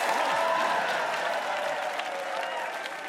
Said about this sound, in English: Clap on, clap off, clap on, clap off, the clapper.